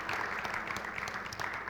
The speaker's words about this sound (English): Can we just give him a round of applause for that?